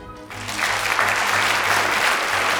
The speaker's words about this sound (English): And with all of you here, I'm tempted to start out with a quick poll by applause to get you to clap in answer to this question. How many of you here actually had breakfast this morning?